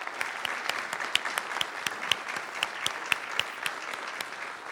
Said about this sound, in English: One more applause for the … and Mr. John Eck.